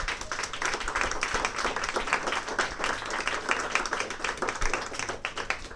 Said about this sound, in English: So with that, I want to thank the panel for tonight. Thank you very much, guys. Big round of applause.